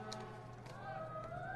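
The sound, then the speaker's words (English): Faint fire truck sirens wail, their pitch slowly rising and sweeping over a steady low background hum of a crowded open space, during a baseball game at Smith's Ballpark near State Street and 1300 South in Salt Lake City. “Hear the fire trucks in the background here.”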